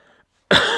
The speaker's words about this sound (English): Sorry, man. Still got that cough from that respiratory infection I had.